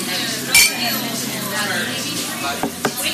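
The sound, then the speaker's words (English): Glasses clink together in a toast: one bright, ringing clink near the start, then a couple of softer taps, over a low murmur of room noise and voices. “whether you think the glass is half empty or half full, there's plenty of room to fill your drink. Cheers.”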